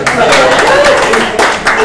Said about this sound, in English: So first, we got to give a round of applause